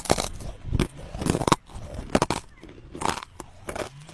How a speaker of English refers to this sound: That crunch was a winning crunch of the Corn Nuts contest.